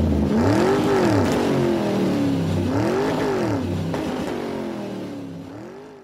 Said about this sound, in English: All right. Let me just start the engine and get on out of here.